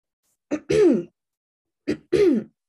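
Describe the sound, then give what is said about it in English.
A man who is dictating gives two short, throaty coughs about a second apart, each a quick catch followed by a rough, voiced rasp like clearing the throat, fairly loud with silence around them. “When one is dictating, one should speak fluently and not cough.”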